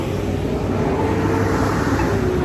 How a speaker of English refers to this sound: Loud truck.